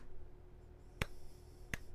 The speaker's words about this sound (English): And it's only Carson clapping. Only clapping.